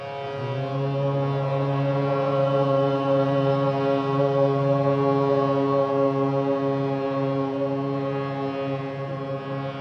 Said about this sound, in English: So the note for Om, and everyone on that side can hum it, breath in.